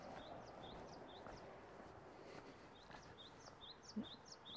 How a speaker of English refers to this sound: Birds are happy to be up.